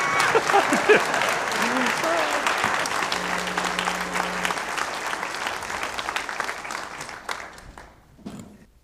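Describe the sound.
An audience claps steadily in a dense, sustained wash of applause that tapers off near the end, with a few scattered claps and murmuring voices as it dies down.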